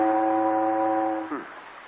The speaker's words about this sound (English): I hear steamboat whistle.